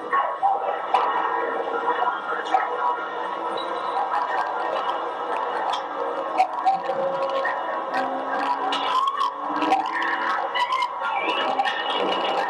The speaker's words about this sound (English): Police dogs howl.